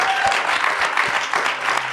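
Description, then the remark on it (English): An audience at a Level Up Human event applauds its guests and itself steadily, a dense wash of many hands clapping at once with no gaps, holding an even loudness from start to finish. “Could you please give them and yourselves an enormous round of applause?”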